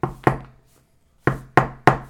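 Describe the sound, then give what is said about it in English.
Loud knocking on a front door: two quick bangs, a pause of about a second, then three more evenly spaced bangs, each with a short resonant decay. No voices. “on the front door. Much more complicated knock. No, this was just like six bangs.”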